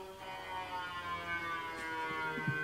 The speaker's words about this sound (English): He is drilling. I think you can hear that. That's another annoyance in China that you need to put up with.